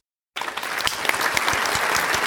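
A burst of applause from a group starts abruptly and keeps going as steady, dense clapping with scattered sharp individual claps, fairly loud throughout with no voices over it.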